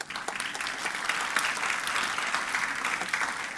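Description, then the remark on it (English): A crowd of people claps steadily and fairly loudly for several seconds as a clap offering to the Lord, a dense, continuous patter of many hands, with no voices standing out. “Doesn't the Lord deserve a clap offering?”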